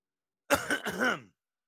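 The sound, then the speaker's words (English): A single fairly loud cough with a rough throat-clearing quality, lasting under a second and heard alone with no talking. “I wanted to cough.”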